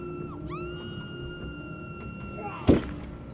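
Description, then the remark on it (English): An axe, held high and brought down on the windshield of a car with its windows rolled up, strikes once with a single heavy, sharp smash near the end that demolishes the glass, cutting through a steady whining, droning tone that runs throughout. “El Camino reared back, the axe held high, and brought it down on the windshield. The first blow demolished the glass.”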